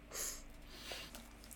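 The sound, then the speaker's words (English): A short, sharp sniff through the nose, a quick airy hiss near the start followed by softer breathy noise, quiet, with no talking. “I indignantly sniff in your vague direction.”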